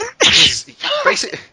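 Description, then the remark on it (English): A single loud sneeze bursts out, a sharp breathy explosion followed by a brief trailing exhale. “bless you.”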